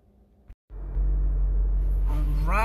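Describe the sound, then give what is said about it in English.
A brief pause gives way to a loud, steady low-frequency rumble inside a moving car being driven to work, droning continuously. A voice seems to begin faintly over it near the end. “We are now in the car.”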